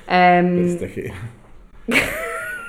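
A cat gives a drawn-out, tonal meow with a strong harmonic stack, then a second yowling cry follows after a short pause, fairly close and loud.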